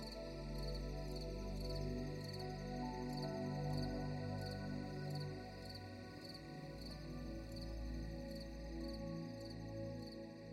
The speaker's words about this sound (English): the hiss of the propane lantern, and the hushed chirping of crickets makes you tired. You turn off the lantern and close your eyes, and the crickets guide you into a deep dream.